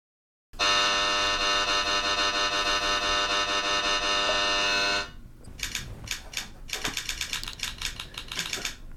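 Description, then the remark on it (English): A loud, steady game buzzer blares for about four and a half seconds, then cuts off, followed by a burst of rapid, uneven clicking like buttons being mashed. “Stating a new rule, if you click when the buzzers aren't on.”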